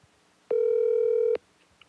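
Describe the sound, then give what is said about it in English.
A single steady electronic telephone tone sounds loud for just under a second as a phone call is being placed, then cuts off abruptly, leaving near silence with no one talking. “So it is now time to give the man, the myth, the legend, Jimmy Norp, a phone call.”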